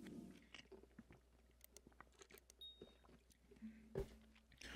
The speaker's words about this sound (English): Excuse me while I chew.